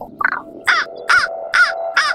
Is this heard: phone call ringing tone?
no